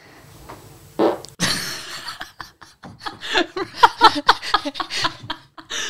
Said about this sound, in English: have just been farting all afternoon. Farty, farty.